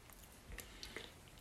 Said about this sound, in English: I just took a sip of sparkling water, which I assume is a base for Mountain Dew.